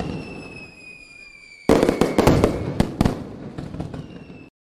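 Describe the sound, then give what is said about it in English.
A quiet hiss with faint high whistles gives way to a sudden volley of fireworks, sharp crackling bangs and pops bursting in rapid succession, loud, before cutting off abruptly. “Fireworks sound there was the perfect segue”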